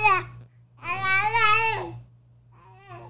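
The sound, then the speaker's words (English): A baby girl babbles and screams in three bursts: a short cry, a long, loud, high-pitched wail with wavering pitch, then softer babbling. A steady low hum runs underneath. “I mean, I don't have no opinion because she's screaming.”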